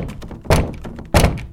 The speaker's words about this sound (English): Suddenly, the harsh pounding on Irina's front door jolted her awake.